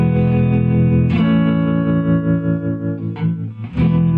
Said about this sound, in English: It's just built-in vibrato and the some reverb, Stratocaster, three chords. I'll add a fourth one.